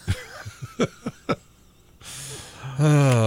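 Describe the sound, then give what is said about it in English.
A few short, choppy vocal bursts, then a loud deep breath drawn in with a rushing hiss, followed by a long, voiced sighing exhale. “Taking it in, taking it out.”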